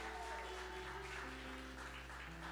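A crowd applauds steadily, a dense wash of clapping hands sustained throughout, with a low hum and some tonal background noise underneath.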